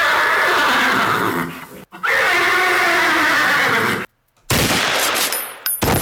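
animal, horse neighing

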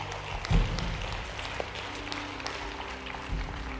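crowd, audience clapping in praise

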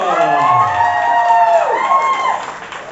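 crowd, audience applause and cheering

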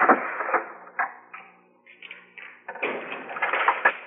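household object, door shutting

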